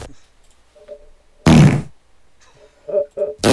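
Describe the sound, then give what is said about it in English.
A voice imitates a wet fart, acted out as someone walking into a meeting in a Staples Center conference room: one loud, sputtering, spluttery burst lasting under half a second, preceded by faint murmuring and followed by a couple of short voiced sounds. “nastiest wet fart”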